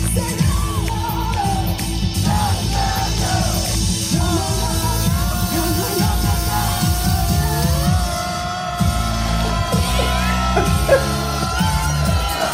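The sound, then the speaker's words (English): A loud crowd cheers and applauds nonstop at a performance at Phoenix Pride in 2021, with high whoops and yells rising above steady clapping and a low rumbling roar throughout. “All this excitement and all this applause and all these people going crazy.”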